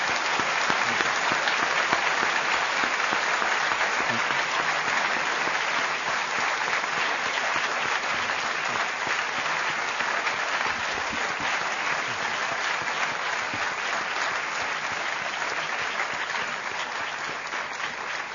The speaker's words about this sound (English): I think the applause says it all. Thank you very much for a most brilliant lecture and a very patient answering of many, many questions.